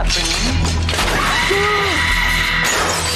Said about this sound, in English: Wait. Why'd that glass break? Because she screams that loud. That's ridiculous.